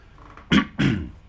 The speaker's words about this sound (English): There's a cough.